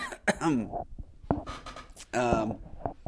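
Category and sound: human body sound, cough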